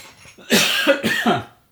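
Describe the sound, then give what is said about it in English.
A person coughs, a quick run of two or three rough, harsh bursts within about a second, with no talking around them. “Sorry, I just need to cough.”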